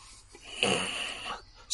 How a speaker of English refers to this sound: Some growling, definite growling happening.